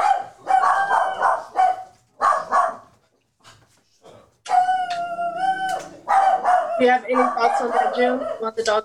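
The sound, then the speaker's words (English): Dogs bark loudly in repeated bursts, with drawn-out howling yelps mixed in and a brief lull partway through. “The dogs, they over there barking their butt off.”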